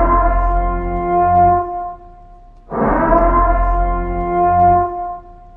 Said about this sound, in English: Do you hear that? Do you hear that sound? Yeah, what is that? I think it's is that a trade siren? Is it?